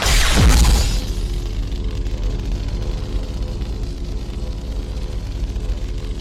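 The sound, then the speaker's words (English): Kylo Ren's chainsaw-like lightsaber from the Star Wars sequels ignites with a loud, harsh crackling burst and falling whoosh, then settles into a steady, low, buzzing hum with a rough, sputtering crackle that continues for several seconds. “When you were saying the sequels, I thought you were going to mention Kylo Ren's ignition.”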